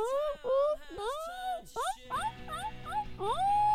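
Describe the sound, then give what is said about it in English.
A person's voice imitates a guinea pig with a rapid series of high, rising squeaks and whines, fairly loud, a few sliding up sharply in pitch. “I was trying to do a guinea pig impression. How do you do a guinea pig impression?”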